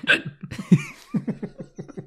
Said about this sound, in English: I really wish that I could see the hiccups coming.